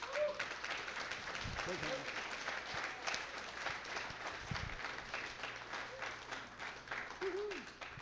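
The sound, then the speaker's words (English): A church audience at a morning service claps steadily for several seconds to welcome a speaker, a dense, even wash of applause with a few faint cheers and vocal whoops rising above it. “I want you to give him a big gathering hand.”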